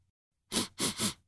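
Three quick sniffs in a row as someone tries to smell Christmas cookies, breathy and hissy, the first standing a little apart from the last two, which come close together. No talking, just the airy inhalations.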